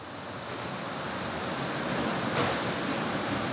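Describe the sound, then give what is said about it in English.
A huge 30-foot-long conveyor belt-style dishwashing machine runs in a dish room with a steady, rushing roar like spraying water, continuous throughout, with no voices, as dishes are unloaded from it. “unloading dishes from a huge 30-foot-long conveyor belt-style machine”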